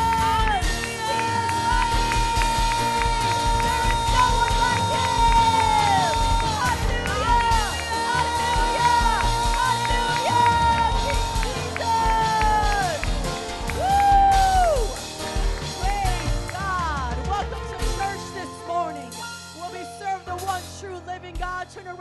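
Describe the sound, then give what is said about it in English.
A church audience at Metro Praise International claps and cheers loudly in praise of the Lord during a morning service, a steady wash of applause with whoops and shouts rising over a dense musical backdrop, easing off near the end. “Give the Lord a hand clap of praise, because he is worthy and he is awesome and he is great.”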